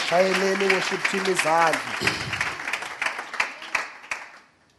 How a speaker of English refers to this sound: Let's give the Lord a round of applause for the worship team.